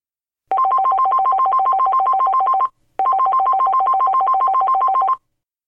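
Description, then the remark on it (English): A telephone rings twice, each ring a loud, fast electronic warble lasting about two seconds, with a short silent gap between them. It is clear, and no one speaks. “Ralph received a telephone call from heaven.”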